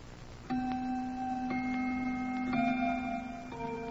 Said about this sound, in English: It was exactly 6:45. That I remember because the grandfather's clock in the living room was just beginning to chime.